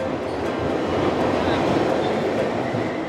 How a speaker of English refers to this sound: Even if you don't think you care about rats, we are going down the subway station.